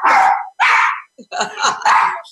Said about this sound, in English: and of course, because we love animals, we always have them barking. Come on, Roach Parsons, Roach, come on in and join us.